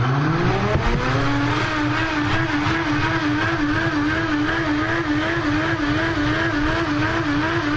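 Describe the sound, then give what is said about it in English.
A Vitamix blender on its clean cycle, swishing water around in the unit: the motor starts lower, quickly climbs to a loud, steady whirring roar, and holds there with a slight wavering pitch throughout, no voices. “We'll start the Vitamix, and it'll go through the clean cycle. Starts out kind of slow. Then it's going to take off.”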